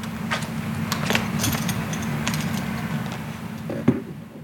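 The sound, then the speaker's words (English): Rustling of clothing and fumbling at a stuck zipper as a person takes off their pants, with a scattering of short scratchy clicks and one sharper snap near the end, all over a steady low hum. “Zipper's stuck. It's fine. Okay. All right. Pants are off.”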